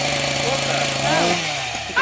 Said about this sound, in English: Yeah, and I'm not talking about, like, who gets what costume or who gets to polish the chainsaw.